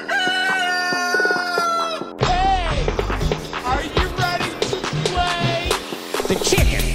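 A rooster crows loudly with a long, sustained cock-a-doodle-doo, followed by a burst of agitated chicken clucking and squawking, close and noisy throughout.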